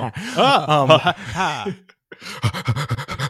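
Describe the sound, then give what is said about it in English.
A person imitates a dog panting: a few voiced, gliding huffs and whines, a brief pause, then a quick, steady run of breathy pants, about nine in a row. “That's me panting like a dog.”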